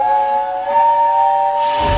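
A loud steam train whistle sounds a sustained, multi-toned blast, then a burst of rushing steam hiss swells in near the end. No voices are heard.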